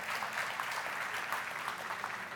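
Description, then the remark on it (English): A church audience claps hands for the Lord during a sermon, a dense, steady patter of many overlapping claps, holding an even loudness for a couple of seconds with no voices on top. “And if you like the last letter, the fact that it's the last one, you can give the Lord a hand clap if you want.”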